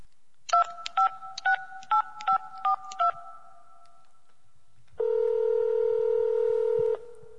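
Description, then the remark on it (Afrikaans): A phone number is keyed in as seven quick, even touch-tone beeps to call a brother and find out what is going on. After a short silence, a steady electronic tone sounds for about two seconds. No one speaks. “ek beter my broer bel om uit te vind wat aangaan.”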